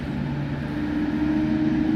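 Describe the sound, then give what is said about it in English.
A loud truck engine rumbles as the truck passes by, a steady low droning hum that swells slightly toward the end, with no voices present. “Oh, there goes the loud truck.”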